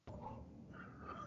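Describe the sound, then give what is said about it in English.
A dog on watch whines in a low, drawn-out tone for about a second, then breaks into a sudden, louder bark at the very end. “I can tell your attack dog is on watch.”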